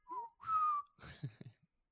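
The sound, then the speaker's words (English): A person whistles two short tones in imitation of a train whistle, the second held longer, followed by a few breathy puffs mimicking a chugging engine, fairly loud. “It'd be like a choo-choo train and be like choo-choo-choo-choo. That's my whistle.”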